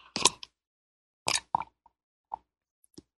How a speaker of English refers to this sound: I'm going to take a sip of my mate tea here. I managed to salvage some of it.